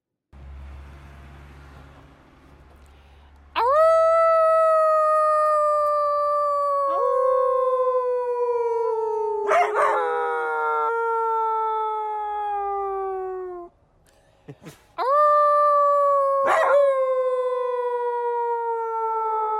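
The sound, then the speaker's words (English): A dog howls loudly in long, sustained, wavering notes, pausing briefly between several drawn-out cries, with a faint low rumble before the first howl. “What we wouldn't give to howl with you one last time.”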